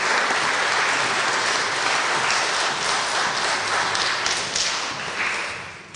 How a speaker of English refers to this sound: So first of all, I'd like to ask for a round of applause for all our participants. What a great job today.